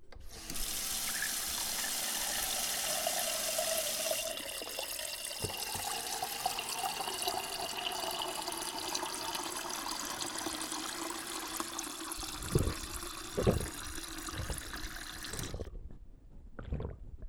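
Water gushes steadily from a tap, starting as a loud bright hiss, then settling into a filling sound with rising pitch, followed by a few clunks before it shuts off.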